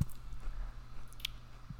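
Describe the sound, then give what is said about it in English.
Soft munching and chewing on food into a microphone, with a few brief wet, squishy crunches scattered over a low, steady hum; no one speaks. “I'm just munching, bro. Keep munching into the mic.”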